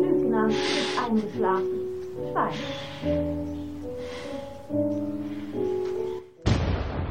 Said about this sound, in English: An explosion in the distance brings the music to a halt, and the visuals show plumes of black smoke billowing over Warsaw.